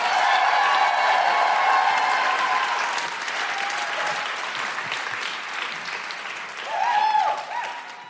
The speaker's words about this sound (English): And please keep that applause going for the incredible ….